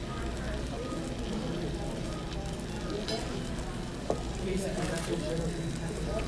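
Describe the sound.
A chicken and shrimp fajita platter just served at the table sizzles, a steady hissing crackle that runs the whole time, with a faint murmur of voices and a brief clink partway through.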